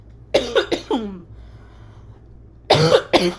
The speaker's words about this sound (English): you'll just have to bear with my coughing there. But this is me in COVID.